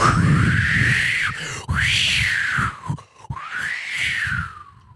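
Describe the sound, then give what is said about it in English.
Strong wind gusts of about 55 miles an hour during a football game roar and howl in three long surges, a whistling tone rising and falling over a steady low rumble, with brief drops between gusts and no voices. “We have audio of that wind, don't we?”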